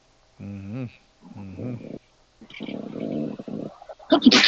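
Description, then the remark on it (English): A quick, loud sneeze bursts out at the very end, following a few seconds of murmured talking and a stretch of breathy, noisy sound. “Bless you.”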